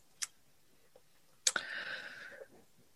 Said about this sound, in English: Could you just tip the clock a little bit my way, because I can't see it. Yeah, thank you.